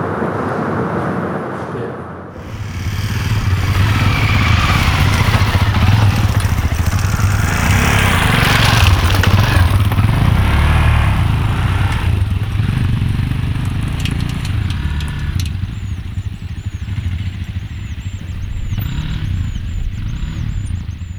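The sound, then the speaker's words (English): Off-road motorbikes in Takiao Province rev loudly and continuously, their engines rising and falling in pitch as they idle and throttle up, with no voices present. “Kiang Lai of the Anlong Veng Peace Centre, followed by the sounds of some off-road motorbikes in Takiao Province.”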